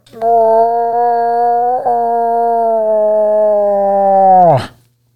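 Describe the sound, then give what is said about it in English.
A guest imitates a cow moose call with one long, loud, steady moaning tone held for about four seconds, breaking slightly midway and ending in a quick downward slide in pitch. “We like to ask a lot of our guests to throw out their best moose call.”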